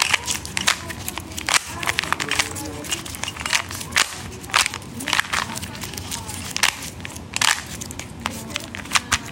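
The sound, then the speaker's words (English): A Rubik's Cube is twisted over and over indoors at home during COVID, giving a steady stream of sharp, irregular plastic clicks and clacks, some snapping louder than others, with a low murmur underneath. “And the other being her Rubik's Cube.”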